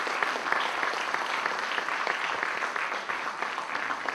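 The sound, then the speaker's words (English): A large group claps steadily, a dense, continuous patter of many hands with no voices standing out, holding an even loudness for the whole few seconds, applauding the kids' church leaders and helpers. “Please give a big round of applause to all our kids' church leaders and helpers.”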